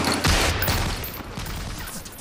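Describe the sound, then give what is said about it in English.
Rapid bursts of gunfire from blanks fired from an AK crackle in a dense, continuous volley, loud, with overlapping shots and a rumbling low-end wash throughout, during a role-play exercise, and no voices. “You can talk about it intellectually beforehand, but once the gunfire goes and people are screaming and yelling, and get out of my bed, you know, all the things that happen, it is real.”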